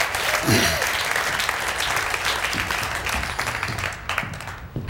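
An audience claps steadily for several seconds, a dense wash of many hands at a fairly loud, even level, with brief murmurs of voices mixed in before the clapping begins to thin near the end.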